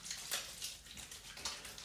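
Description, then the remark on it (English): Water runs from a tap in a steady, quiet hiss while someone washes their face with a hydrating, moisturizing facial wash, with a few brief splashy surges as hands move through the stream. No voices are heard. “Right, let's get with this hydrating, moisturizing facial wash. Save some water.”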